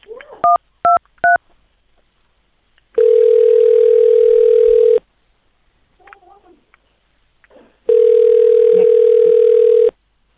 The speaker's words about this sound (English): Can you hold on the line, please? You're going to hear a ringing sound.